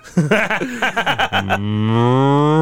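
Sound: cow mooing sound effect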